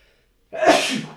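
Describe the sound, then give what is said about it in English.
A single loud sneeze bursts out after a brief silence, a sharp explosive blast of breath that tails off over about half a second. “I have to cut it out because it's a grotesque sound.”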